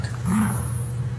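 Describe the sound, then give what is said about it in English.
A small dog holding a sock and refusing to give it back growls low and steadily for about a second, a rumbling snarl that swells slightly in the middle, with no one talking over it. “Oh, yeah, look at that growl. Very tough man.”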